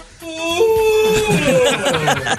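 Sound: human yawn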